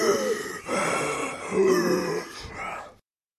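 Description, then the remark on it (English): A person clears their throat and nose, making three harsh, rasping snorts and grunts in quick succession with no talking, then silence. “Clear the nasal passages so you don't get the Darth Vader breathing.”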